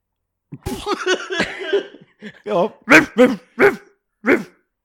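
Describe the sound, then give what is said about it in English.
Five short, sharp dog barks in an evenly spaced series, each one loud. A stretch of busy vocal sound comes just before them. “Oh, five barks.”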